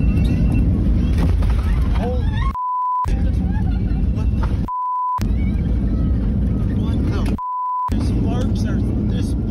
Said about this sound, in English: Yeah, that's what you call a hard landing. The plane making that as the left wing hit the ground, sparks started flying, was dragged down the tarmac.